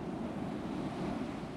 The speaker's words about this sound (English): Outside, beneath the snoring of his drowned men and the keening of the wind, he could hear the pounding of the waves, the hammer of his god calling him to battle.